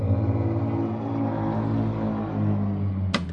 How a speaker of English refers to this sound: There it is. Jesus Christ, these cars are fucking loud as shit.